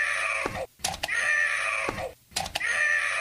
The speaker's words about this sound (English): I'm the voice of like every 90s commercial and toy without knowing it. Hey, this. This is me. That's me. That's my scream.